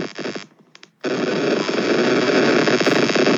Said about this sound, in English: Why is that happening? It's going to seem like we've done it as a sound effect, as a homage, and we're genuinely getting interference.